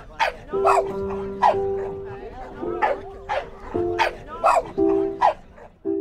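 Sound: dogs barking and whimpering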